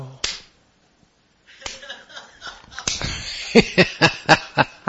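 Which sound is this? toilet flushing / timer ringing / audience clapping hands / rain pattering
audience clapping hands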